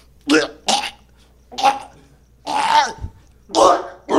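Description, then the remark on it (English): A person imitates someone coughing up a pad of black tar heroin about 3 inches long: five harsh, raspy throat bursts with short pauses between them, growing rougher and more gurgling toward the end, and no words spoken. “And coughs up a pad of black tar heroin like 3 inches long.”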